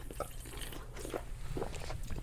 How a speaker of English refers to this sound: Oh, we're going to take a sip at the same time? I saw you pick up your Coke, and I was like, fuck, dude, that makes me want a little sippy poo. 1, 2, 3.